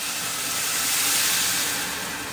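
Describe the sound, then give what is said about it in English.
Boiling water pours steadily into a bowl to cover pasta, a continuous rushing hiss with a faint steamy edge that holds for a couple of seconds without any talking. “And then we're going to pour the boiling water into the bowl to cover the pasta.”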